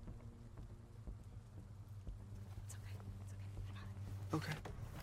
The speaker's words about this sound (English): Okay, it's raining.